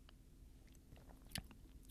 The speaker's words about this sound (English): All right, I'm going to take a little sip and then see if my throat closes up just in case. Hold on.